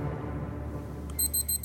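An electronic alarm starts beeping near the end, a quick run of high, shrill pulses sounding over a steady low rumbling hum, with no one talking.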